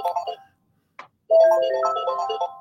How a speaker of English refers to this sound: Sorry, my phone rang. I don't know if you heard that. Apologies.